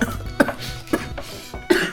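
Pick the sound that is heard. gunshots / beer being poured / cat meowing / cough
cough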